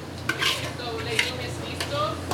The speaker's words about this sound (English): using a long metal spoon to scoop the dish, known as legume, from a 10-gallon wok into a silver serving tray.